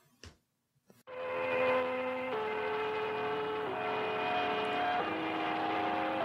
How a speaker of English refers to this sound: Now I'm going to play for you some real number stations very briefly